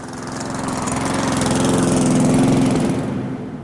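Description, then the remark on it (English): A lawnmower engine runs steadily, its loud, buzzing drone swelling slightly before easing off near the end; it is started on stage as a musical instrument by a band's singer. No voices are heard. “Music Night, the show features John wearing an aluminium foil suit, and all goes to plan, until … starts a lawnmower on stage as a musical instrument, which predictably angers the bar owner, who kicks them out and bans them from ever returning.”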